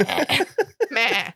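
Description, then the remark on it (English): A goat bleats in a few short, wavering bursts, ending with a longer quavering cry, loud, with no talking over it. “Goats make all kinds of weird noises.”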